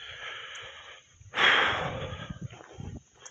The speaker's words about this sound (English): I have something in my throat, some type of allergy, I guess, some phlegm running down, I don't know, but that's why I'm coughing and grunting all the time, so sorry about that, guys.